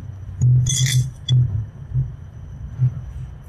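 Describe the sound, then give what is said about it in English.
Two dice clink and rattle together a few times in quick bursts as they are handled for a roll, over a low background hum with no one speaking. “Okay, so what we're going to do is we're going to roll 2 dice.”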